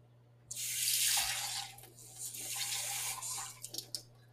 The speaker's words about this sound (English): Alright, next is water. How much water? 1 cup. Take you to the sink. I'll fill this up.